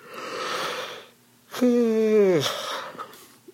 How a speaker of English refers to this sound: So, that's me yawning.